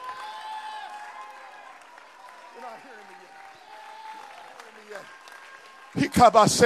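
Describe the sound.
Sustained organ-like tones hum beneath a voice for several seconds, then an audience suddenly breaks into loud, dense clapping at the very end.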